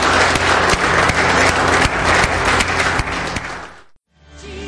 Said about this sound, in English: Can we just give God some thanks by just giving him some applause before we head out, guys?